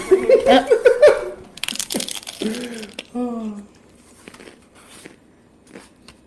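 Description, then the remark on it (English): Crackly crinkling of office paper in short bursts as pages are turned, with a voice talking over and between the rustles before things quiet down to faint handling noise. “Sorry, I have a lot of office”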